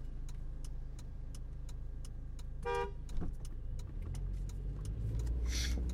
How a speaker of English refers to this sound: Yeah, sorry, I had to honk at a guy. His, oh, that may have been a bad idea. There was an ambulance coming around the corner, but he went anyway. He didn't like me honking at him.